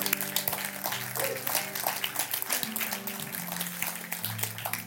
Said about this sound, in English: If you believe it, would you say amen, church? Come on, can we clap our hands?